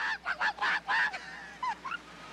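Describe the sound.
A person clucks like a chicken for a Klondike bar: about five loud, rapid squawking bursts, then a pause and two short rising chirps. No one talks.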